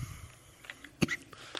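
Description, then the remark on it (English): A single short, sharp cough breaks a quiet stretch, followed near the end by a second, briefer throat burst. No one speaks. “Sorry, I'm not crying, I'm coughing.”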